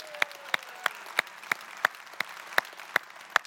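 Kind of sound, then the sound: crowd, audience cheering and applauding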